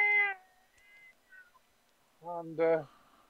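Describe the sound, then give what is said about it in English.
Two loud, drawn-out cat yowls, a short one and then a longer rising wail after a quiet gap, most likely a human voice imitating a startled cat jumping out from behind a bed. “And as you pull the bed over, this cat jumps out from behind the bed. With a”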